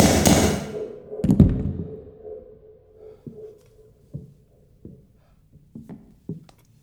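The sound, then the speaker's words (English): A heavy thud of a body falling to the floor just the other side of a curtain lands after a brief noisy rustle, followed by several fainter, irregular knocks and taps fading into quiet. “When the body fell, thud was not even a foot from where they were standing.”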